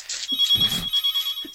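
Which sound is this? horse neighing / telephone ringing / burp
telephone ringing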